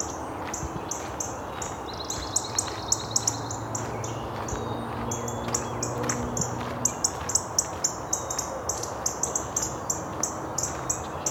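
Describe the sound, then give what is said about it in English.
Cardinals give a busy stream of sharp, metallic ticking calls, repeated rapidly and irregularly, over a steady low background rumble with no singing. “very active cardinals. This might be a dispute over territory here. All this ticking, it's not song.”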